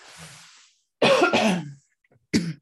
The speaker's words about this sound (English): Excuse me, I have to cough.